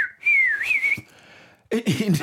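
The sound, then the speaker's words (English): A person whistles a short, wavering, clear tune for under a second, followed by a brief pause before someone starts speaking. “He said he will whistle. He will whistle. God whistles.”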